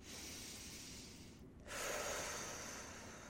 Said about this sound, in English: Oh, let's all do some deep meditative breathing.